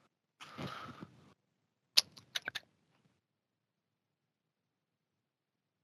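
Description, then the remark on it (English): A quick riffle of a pack of Chronicles trading cards featuring 2022 draft prospects being shuffled, followed by a few sharp snapping taps as the pack is squared, then silence. No one speaks. “I like to do a little shuffle.”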